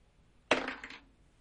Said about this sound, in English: That is the third one I have rolled in a row tonight on 2 separate dice.